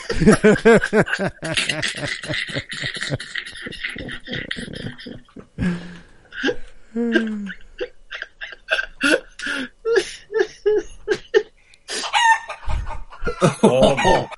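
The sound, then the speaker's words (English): A flock of chickens clucks busily, with repeated sharp, choppy calls, and a rooster's drawn-out crow rising over them near the start and again toward the end. “You fuck chickens! Listen.”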